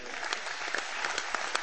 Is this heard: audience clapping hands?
yes